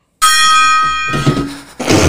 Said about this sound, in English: It's the best $17 gong I could get.